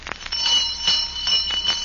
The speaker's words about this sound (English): Come on, ye, for whom the bell tolls.